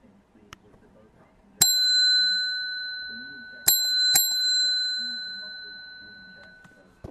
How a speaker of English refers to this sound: You get a bell this time. That means I'm in the little Toyota parked in Thompson Park.